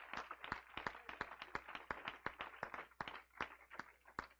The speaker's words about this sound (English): Let's give the Lord a great big hand clap of praise.